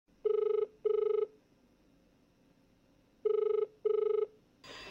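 A telephone ringback tone of an outgoing phone call sounds in two double bursts, each pair of short buzzy rings separated by a pause, clear and steady with no one speaking.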